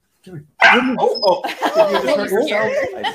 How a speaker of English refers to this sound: What is it? She is the most hyper, energetic, crazy dog. Now she's going nuts. Nope. She's a German short hair pointer and Brittany Spaniel mix.